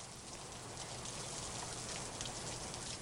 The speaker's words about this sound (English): The rain was getting stronger, and all I could hear was the sound of the water drops falling down on the trees.